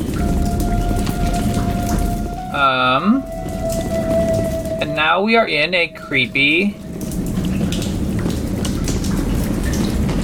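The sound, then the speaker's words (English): Water drips and patters steadily in a wet tunnel, a constant splashy wash beneath a faint steady hum, while a voice speaks briefly twice over it. “creepy wet tunnel. Water is dripping down, as you can hear.”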